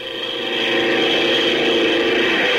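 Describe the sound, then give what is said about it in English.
A propeller plane's engine roars as it takes off for reconnaissance, a steady droning whir with layered tones that swells in loudness over the first half-second and then holds strong. “Gee, those propellers sure stir up the wind.”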